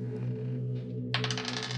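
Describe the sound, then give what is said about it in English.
Dice rattle and clatter across a tabletop in a quick burst of rapid hard clicks, rolled for an athletics check in a game, starting midway after a quiet stretch with a steady low hum underneath. “I'm using the bloody dice because I feel like things could take a turn here if they go bad, so.”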